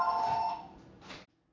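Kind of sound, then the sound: household object, telephone ringing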